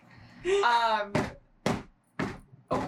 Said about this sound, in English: But anyway, at this point, you hear the door open again.